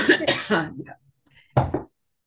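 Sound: coughing and throat clearing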